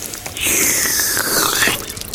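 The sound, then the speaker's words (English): Coffee overflows the brim of a cup and runs off the edge of a table, spattering below onto a person lying on the floor in a steady trickle lasting a second or two, fairly loud, with no voices. “It begins pouring over the edge. Please say when. It drips off the table and onto Thomas's face on the floor”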